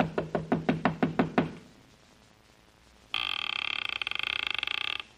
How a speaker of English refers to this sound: The town seemed deserted, but I finally took a chance and knocked on a door.